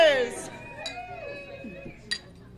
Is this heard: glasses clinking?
yes